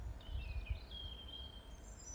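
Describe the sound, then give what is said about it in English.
Faint, thin bird whistles drift in, a long wavering call followed by a higher short one, over a low outdoor rumble with no one speaking. “And you can hear the birds.”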